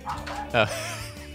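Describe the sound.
One sharp dog bark cuts in briefly, fairly loud, with low indistinct voices murmuring before and after it.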